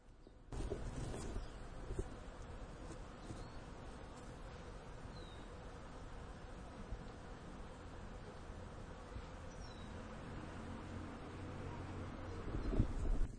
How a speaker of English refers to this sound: All right, that's it. That's the bees. Bees on March 30th.